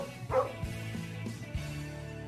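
A dog gives a single sharp bark early on, followed by steady low thumping and a faint background hum with no other barks.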